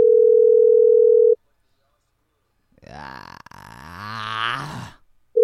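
A loud, steady telephone tone sounds for about a second while a call is being placed, and cuts off. After a pause, a drawn-out guttural vocal noise like a belch or groan follows, then the tone returns.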